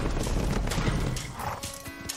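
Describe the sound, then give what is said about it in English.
A mass of horse hooves clatters loudly as about 15 men ride in together on horseback in a film trailer scene, with a brief whinny rising over the steady clopping near the end. “You know, like that scene right there where he comes out, and it was like 15 guys on a horse.”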